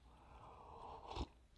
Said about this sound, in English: I need a sip because I'm running out of brain juice.